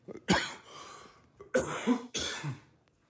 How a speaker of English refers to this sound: Gosh, I'm so sorry about the cough.